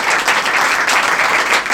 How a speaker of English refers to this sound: So give a round of applause for Helen Arney.